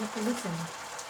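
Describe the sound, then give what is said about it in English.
Gyoza dumplings sizzle steadily in a lidded pan over high heat as the added water evaporates, a soft, even hiss with a brief voice murmuring over the start. “And the gyoza, frying of gyozas, is quite particular because we use our ears to actually know if it's done.”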